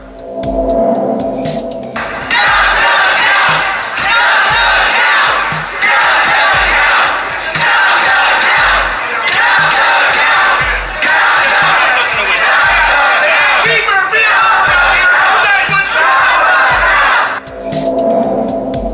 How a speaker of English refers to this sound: They have been here kind of circling the area around the crowd, a large group of them chanting as they sort of just make this kind of constant circle around the group gathered here at Freedom Plaza.